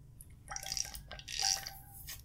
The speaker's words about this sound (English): I'm going to drink some water yet again.